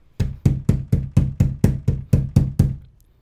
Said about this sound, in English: we heard some banging on the door, just regular old, and we're like, yo, what the fuck? Someone banging on the door? She tells me, someone's banging on the door.